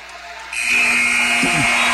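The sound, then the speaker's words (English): A loud, harsh end-of-game buzzer blares in after a brief murmur and holds one steady, high-pitched buzzing tone to the end, with faint crowd noise beneath it, as the clock reaches zero and the Greensburg Lady Pirates win the Sectional 29 championship. “And that'll do it. Double zeros on the clock, and the Greensburg Pirates, the Lady Pirates, are champions of Sectional 29.”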